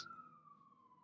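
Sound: emergency vehicle siren passing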